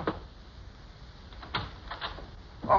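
Several heavy knocks pound on a back door at uneven intervals, a couple close together, with the last one the loudest, against a quiet, slightly hissy background.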